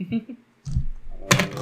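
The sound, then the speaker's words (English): Dice fall and clatter across a surface in a couple of quick bursts of clicking rattles. A voice murmurs briefly just before. “Oh, my dice fell!”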